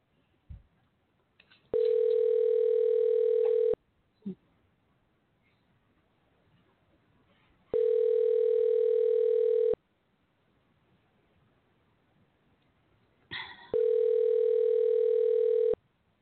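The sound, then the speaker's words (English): An outgoing phone call to a friend rings unanswered: three steady two-second rings separated by roughly four-second pauses, clear and fairly loud, with a few faint clicks in the quiet gaps. “Let's see if he'll actually answer. If not, we'll leave him a message. Is it ringing?”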